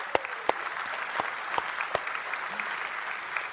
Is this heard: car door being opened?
no